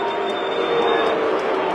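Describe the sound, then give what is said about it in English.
The crowd at U.S. Bank Stadium boos in a steady, loud, sustained roar with a low droning tone running through it, with no one speaking over it, after a pass is intercepted and returned for a touchdown (pick six) by the Indianapolis Colts. “U.S. Bank Stadium is not booing that play. They're booing the fact that we've thrown a pick six.”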